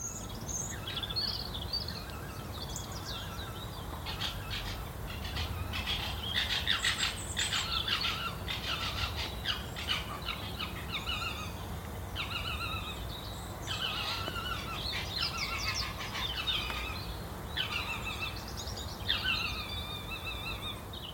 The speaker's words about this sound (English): Well, that's definitely some foxes, isn't it? A brilliant sound. I think that's amazing. Particularly a nice little Christmas present. I would love to hear that. So exotic and quite creepy.